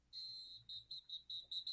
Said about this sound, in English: Oh, that whistle sounds great. That whistle sounds great.